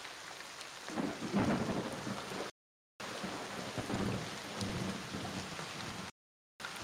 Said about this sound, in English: How bad's it raining? It's going to start pretty light, but eventually it's going to get kind of hefty. And then probably about 4 hours after that, you're going to start seeing lightning. Are we out in the open? Yeah, I mean, you're in an open field.